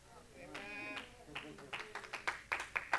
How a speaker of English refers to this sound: One, two, three, four people clapped on that.